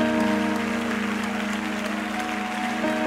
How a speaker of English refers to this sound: Hang on a second, because it sounds the same as when you clap for me. It ought to sound different when you clap for him.